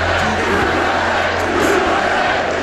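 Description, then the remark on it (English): A large crowd roars and chants "USA" together as the president is at the podium, a dense, loud wall of many voices that holds steady throughout with no single speaker standing out. “Crowd's starting to chant USA.”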